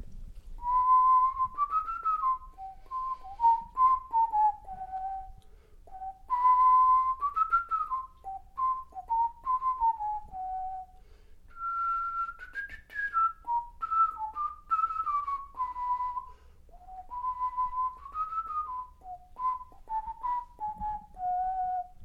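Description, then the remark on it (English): A person whistles a catchy tune from an original PlayStation 2 video game alone, clear, in bouncy phrases of rising and falling notes with short pauses between them and no talking. “Perhaps my whistling doesn't really do it justice, but I was over at a friend's house once playing a popular original PlayStation 2 game, and for weeks afterward, I kept humming or whistling that catchy tune.”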